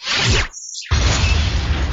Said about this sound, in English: Shall we scan the ship, retreat, open fire, boost our shields, or attempt to signal the ship? Open fire. The enemy ship fires its main cannon.